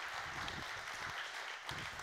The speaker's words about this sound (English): Come on, let's give him a great big hand clap today. What a great message.